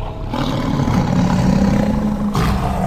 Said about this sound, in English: A great roar goes up, and Miguel jumps halfway out of his skin.